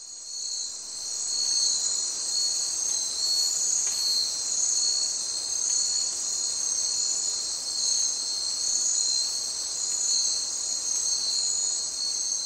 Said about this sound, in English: Wow, that's pretty quiet by comparison. Yeah, you've lost the birds, you've lost the mammals, really you just have the background insects. I mean, it's just a night and day difference.